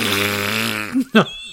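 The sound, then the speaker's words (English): A voice imitates a loud, drawn-out fart with a buzzing, rasping tone lasting almost a second, followed by two short vocal bursts. “And as she squatted, she let out the most almighty fart.”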